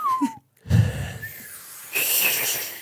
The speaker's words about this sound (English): That's us whistling.